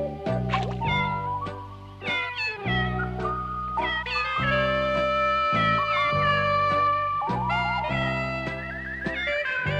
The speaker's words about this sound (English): Meow, meow, meow, meow, meow, meow, meow. It's a scary song. Meow, meow, meow. That might be the most frightening thing in the entire film, is that song.